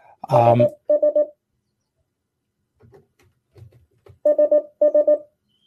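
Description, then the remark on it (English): A phone beeps in quick clusters of three sharp tones as it is being muted, once near the start and twice more near the end, with a brief noisy clatter first and faint low murmuring between. “Oh, sorry, I just got to mute my phone there.”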